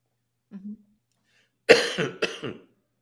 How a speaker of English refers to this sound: Excuse me a second, I'm going to cough.